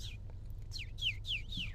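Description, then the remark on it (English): Someone whistles a series of bird-like calls, about five quick descending chirps in a steady rhythm, fairly clear against a low background hum, imitating a songbird. “my secret talent is bird noises.”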